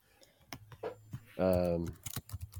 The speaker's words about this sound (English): There we go. I hear your keyboard going. I'll let you find it.